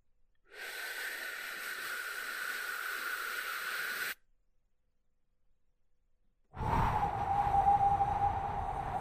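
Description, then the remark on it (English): Exaggerated, slow breathing demonstrating a breathing pattern for 3 breaths, with no talking: a long, airy, hissing inhale lasting a few seconds, a pause of silence, then a heavier, rougher exhale that drags on steadily. “Let me exaggerate the sound of my breath so that you can follow. I shall do this for 3 breaths.”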